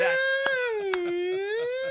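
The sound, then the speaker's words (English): A voice imitates an eerie penguin call: one sustained, wavering wail that dips in pitch and rises again, rich in bright overtones, with two sharp clicks partway through. “Doesn't if you were like a penguin and you had your squeak box, wouldn't you sound kind of like, what's that sound you make? That scary noise you make?”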